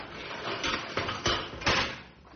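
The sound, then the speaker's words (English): A cage door slides open with a few rattling, scraping bursts spread over a couple of seconds, moderately loud, with no voices. “Get ready to open the cage door.”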